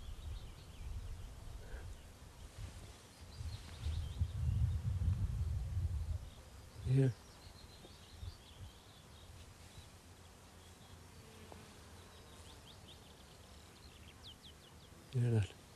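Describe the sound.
Quiet outdoor bog ambience with faint, scattered bird chirps and the low hum of buzzing flies, distant murmuring voices coming from miles away across the bog, and a couple of brief sharp knocks.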